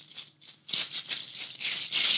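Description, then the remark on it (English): A rain stick tipped and shaken, giving a dense, hissing patter of tiny grains in bright, fluctuating waves that swell louder after a brief quieter start, with no voices. “Is that a musical instrument? Yeah, it's a rain stick.”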